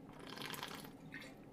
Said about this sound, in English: Just grabbing a little water here as we go through.